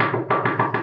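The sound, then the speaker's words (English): A quick series of about five firm knocks on a door at night, waking a person in bed, evenly spaced, each one a loud dull thud that rings briefly before the next. “On the door.”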